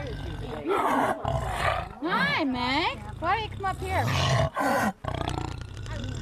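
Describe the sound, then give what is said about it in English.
A jaguar growls and roars in loud, rough bursts, with a person speaking briefly over the calls. “So watch, listen to the Jaguars growls.”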